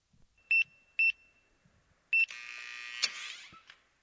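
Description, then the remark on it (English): Three short, high electronic beeps in an uneven rhythm after the code 123 is entered on a safe, followed by a whirring mechanical rattle with a sharp click partway through as the safe door unlocks. “You enter the code and you hear a click indicate the safe door is unlocked.”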